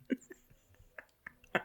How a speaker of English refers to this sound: Are you going to vomit? She's burping.